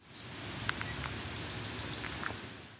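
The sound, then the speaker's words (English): A Nashville Warbler sings a thin, high song: a string of quick sweet notes running into a faster twittering trill, clear over a soft, steady background hiss. “This was a Nashville Warbler.”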